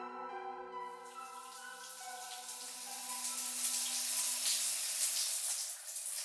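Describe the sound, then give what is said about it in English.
Shower water switches on after a moment and runs in a steady, hissing rush of spray, with a faint tonal hum underneath that fades out near the end. “I took a shower and got dressed, leaving my hair wet and sad-looking”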